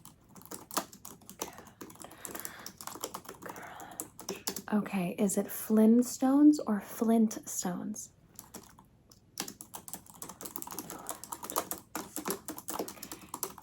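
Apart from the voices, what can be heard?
typing on a keyboard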